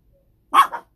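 A chihuahua lets out a quick, high-pitched double bark, sharp, with silence before and after.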